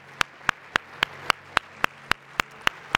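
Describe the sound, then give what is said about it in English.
Steady, rhythmic applause during a worship service, given to honor the Lord: about eleven sharp claps in three seconds, evenly spaced like hands clapping together in time, with a low hum underneath and no talking. “Can we just give him a round of applause and honor him with our hands?”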